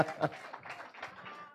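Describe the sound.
During a Bible sermon, a crowd claps together for the Lord Jesus in a short burst of applause, with voices calling out over it. The clapping is moderately loud and dense rather than individual claps.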